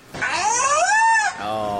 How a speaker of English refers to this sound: Lovely. That's the killer whale. Sorry if you do have dogs, because that would have set mine right off.